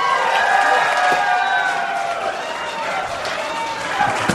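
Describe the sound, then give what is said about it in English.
A dense live audience cheers and shouts together, a sustained roar of many overlapping voices with scattered claps and rising whoops, staying loud throughout. “So let's cheer Alex on.”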